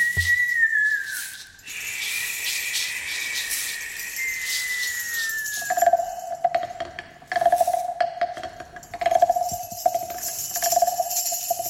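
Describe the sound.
Someone whistles to imitate wind whistling over the mountain, in a radio ballad about the Preseli Hills: long gliding tones that slowly fall in pitch, then a steady lower note that swells and fades in repeated gusts, fairly loud with no talking.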